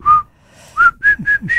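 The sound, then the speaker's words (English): Someone whistles the Colonel Bogey March melody: a clear, steady note, a brief pause, then four quick notes climbing slightly in pitch, with no talking. “It said the melody is the Colonel Bogey March.”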